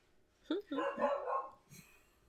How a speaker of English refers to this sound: Damn dogs.